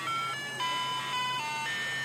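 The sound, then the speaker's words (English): A tinny, electronic ice cream truck jingle plays a bright stepwise melody of sustained tones, steady and fairly loud, with no talking over it. “last week we mentioned there was a song that I heard on a ice cream truck and I recognized it and I didn't know what it was.”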